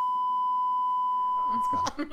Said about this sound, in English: In the movie The Slayerettes, that's about the franchise. Nope, that's getting beeped out, too.